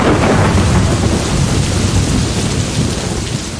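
Heavy monsoon rain pours down in a dense, steady roar as the monsoon arrives, while deep thunder rumbles underneath, loud, with no voices, easing only slightly toward the end.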